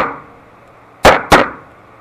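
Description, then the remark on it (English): Two sharp-edged knocks in quick succession, an imitated knock at a door, each loud and fading quickly, following a moment of quiet with no talking. “You know, I swear, I heard a knock at the door. What did it sound like?”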